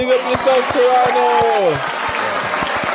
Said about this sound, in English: Yo, let's give a round of applause. Yeah, man. That's definitely deserves a fucking round of applause.